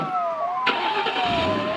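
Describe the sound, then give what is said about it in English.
A getaway Jeep's engine catches with a sudden burst and settles into a steady rumbling drive as the vehicle pulls away, driving out of Ioannina, while a thin, wavering high tone glides underneath the whole time. “We abandon the puppy and get into the Jeep and drive.”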